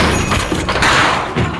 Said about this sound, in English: You feel sure enough about this to bust down the door? I do. All right, let's do this. 1, 2.